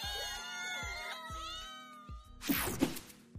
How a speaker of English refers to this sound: The only thing I'm scratching, though, is my head at how on earth Peter manages to live with all that meowing.